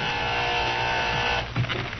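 door buzzer

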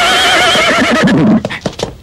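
horse neighing

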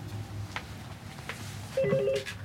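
phone ringing

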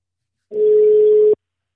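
telephone call ringing tone

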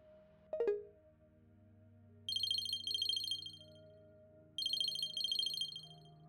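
phone ringing

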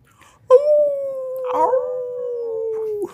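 wolf howling

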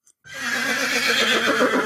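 horse neighing

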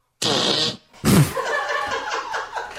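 fart

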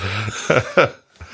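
cough

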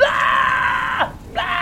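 person yelling loudly

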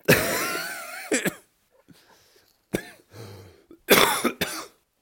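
coughing

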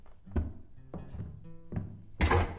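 door closing thunk

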